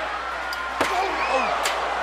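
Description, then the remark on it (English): A sharp, loud steel chair shot cracks once against a wrestler fighting on the steel roof of a cell, over steady crowd noise, followed moments later by a fainter second impact while voices murmur in the background. “Oh, chair shot just makes you sick, makes your blood curl.”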